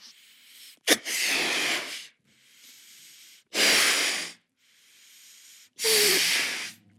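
A balloon, used as an illustration during a talk to an audience, lets out air in three loud, rushing hisses with softer hissing between them, opening with a sharp click and ending with a brief squeaky whine.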